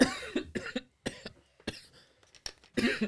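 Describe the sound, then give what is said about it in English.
A fit of harsh coughing: several rough bursts in quick succession, then a few more spaced out after short pauses, with no talking. “All right, I'm going to try and restrain from coughing for the rest of this round.”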